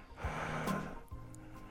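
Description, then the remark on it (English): A heavy breath pushed out in one long huffing exhale onto glasses to fog them, then a softer, quieter breath trailing after. No talking. “Right, now, it's heavy breathing. Look at that. See that fog?”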